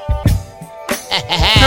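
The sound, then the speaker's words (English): A voice imitates a pig's oink, a few loud, nasal grunting bursts in quick succession, with no other talking. “I messed with that oink.”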